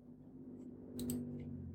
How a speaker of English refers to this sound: So, let's do a little New Year's reading and see what we can come up with. Nope, let's gather the cards.